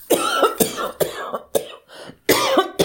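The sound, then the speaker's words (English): A voice imitates the long coughing fit of a queen slapped hard on the back: a rapid series of harsh, raspy coughs in uneven bursts, loud, with brief gasping pauses between spasms. “This sent the poor queen into a long and lasting coughing fit”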